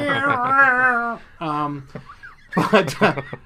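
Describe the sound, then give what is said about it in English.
A person in a studio imitates a cat with a long, drawn-out meow, then a shorter, lower one, followed by a brief burst of breathy, noisy vocal sounds, all fairly loud. “Actually, that was like a fucking cat. Why is there a cat in the studio?”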